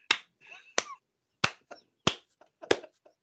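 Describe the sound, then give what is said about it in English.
A lone person claps slowly, about five sharp, evenly spaced claps roughly two-thirds of a second apart, with a few softer taps and faint murmurs in between. “It's my one man slow clap for you”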